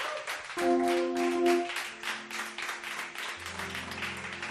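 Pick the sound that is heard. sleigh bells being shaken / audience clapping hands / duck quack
audience clapping hands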